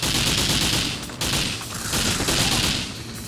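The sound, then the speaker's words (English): Rapid, continuous automatic gunfire from a video game sentry gun put down by enemies but firing in the player's support, a dense, loud rattling burst that barely pauses for about three seconds, with no voices over it. “Get the sentry gun helping me out.”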